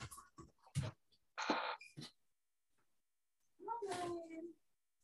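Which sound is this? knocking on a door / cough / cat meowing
cat meowing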